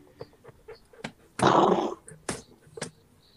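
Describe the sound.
A person imitates a horse with one loud, raspy, blustery snort in the middle, surrounded by short clicking mouth sounds and brief vocal bursts.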